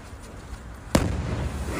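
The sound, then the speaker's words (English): A single sharp firework blast cracks out, followed by a booming, reverberant rumble that lingers as if echoing off enclosed walls, over a steady background noise; fireworks set off in a tunnel underneath a bridge. “So these dudes are fucking with fireworks underneath a bridge in a tunnel.”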